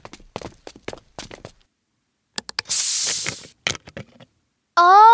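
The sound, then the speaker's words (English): A sparkling water bottle from the bar in a casino is opened: a few plastic clicks and taps, then a loud, bright hiss of escaping gas for about a second, more clicks, and a brief squeaky tone at the end. “Gather round and listen as I open a bottle from the bar.”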